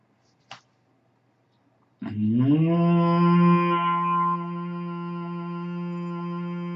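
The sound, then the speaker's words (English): A single sharp click, then after a pause a low, steady hum on the out-breath of a deep breathing exercise starts with a slight upward slide and is held loudly for several seconds, softening a little toward the end. “While breathing out, make the humming sound longer, deeper, louder.”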